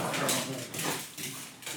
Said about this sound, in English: Wow, that's our dogs.